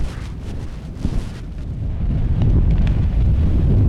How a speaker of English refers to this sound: The wind continued to whip around us, pulling strongly at any loose clothing.